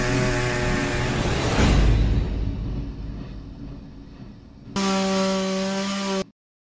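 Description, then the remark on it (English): A chainsaw engine snarls and revs, surging to a loud roar, easing off, then holding a steady buzzing rev for a moment before cutting out abruptly. No voices. “Number 10, easily, Texas Chainsaw Massacre. Die!”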